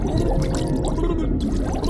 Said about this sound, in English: It was so much water that it turned my backside to an upside, and all I could hear were the bubbles gushing out of my mouth.